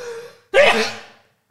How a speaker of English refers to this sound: I'm going to sneeze. I'm going to sneeze, everyone.